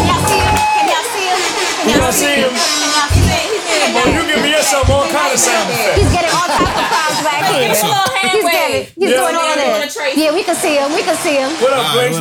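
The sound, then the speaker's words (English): Dense backstage crowd chatter fills the whole clip, many overlapping voices talking and laughing at once in a loud, steady babble, with one brief dip near the end. “He's getting all types of crowds back here.”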